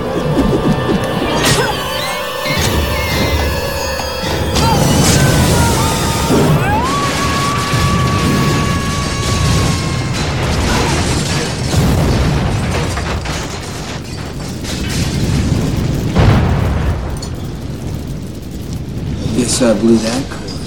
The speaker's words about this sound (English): Yeah, kind of not believable that they could survive a massive gas explosion taking place right there, but that's fine.